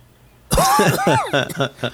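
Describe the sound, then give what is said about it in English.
After a half-second of quiet, a voice bursts into an exaggerated, throaty staged cough, several loud rasping hacks in quick succession, with a vocal, performed quality. “Rolled down the window and started faking a cough.”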